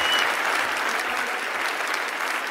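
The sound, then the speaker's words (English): Steady, sustained audience applause for comedians David O'Doherty and Dara Ó Briain at Cat Laughs, a dense wash of many hands clapping at an even loudness throughout, with no voices standing out above it. “Folks, give it up, please, for David O'Doherty and Dara Briain!”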